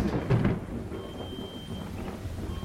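A thunderstorm rumbles, swelling to a deep, heavy roll near the start before settling into a steady low grumble beneath a constant rain-like hiss, with no voices.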